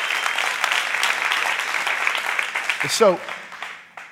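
A crowd claps steadily in a dense, continuous wash of applause, with a brief raised shout cutting through near the end before the clapping thins out.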